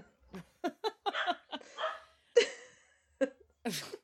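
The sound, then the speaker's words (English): A female dog barks repeatedly in a quick, uneven series of sharp yaps, some clustered together and others spaced apart, with no talking. “She's still barking.”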